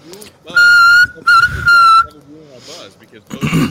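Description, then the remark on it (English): A referee's halftime whistle blows loudly: one long blast, then a short toot and another long blast, with voices talking faintly underneath and continuing after. “I need to get a halftime whistle.”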